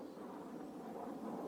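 A steady, unbroken roar of airplanes flying overhead over the homes of poor people, a broad low-to-mid rumble holding at a constant level throughout, with no voices.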